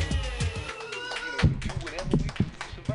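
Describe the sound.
An audience claps, a dense patter of many hands making sharp, overlapping slaps that stay fairly steady for a few seconds, with voices and some tonal sound mixed underneath.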